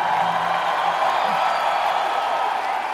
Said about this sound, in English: After a 2-minute applause break, … manages, sort of kind of, to humbly acknowledge the adoring crowd.